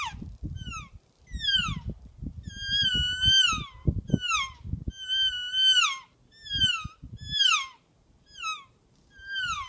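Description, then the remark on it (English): A Real Game Calls Elk Reel elk call, made in Gypsum, Colorado, blown repeatedly, producing about a dozen short, high-pitched, downward-sliding mewing squeals in quick irregular bursts over a low rumbling background. “Real Game Calls featuring the Elk Reel.”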